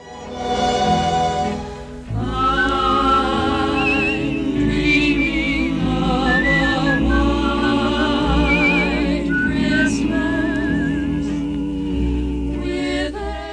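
A man whistles a wavering melody over a group of women singing with lush orchestral backing, the whistle rising clearly above the steady, full music throughout.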